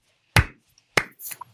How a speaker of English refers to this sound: Budget did not allow for actual professional fanfare, so the slow golf clap will have to do.